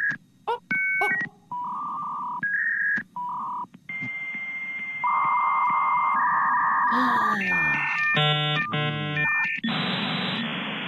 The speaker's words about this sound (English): Oh, let's check out the BetQL mainframe, Double D. Beep, boop, beep.